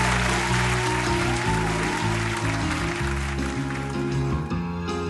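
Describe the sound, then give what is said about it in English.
A loud, sustained round of applause for the piano player, dense clapping continuing steadily for about five seconds while piano chords keep playing underneath. “Let's get another round of applause for my buddy on the piano,”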